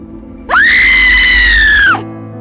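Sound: person screaming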